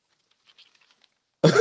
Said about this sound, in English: I know. I was coughing.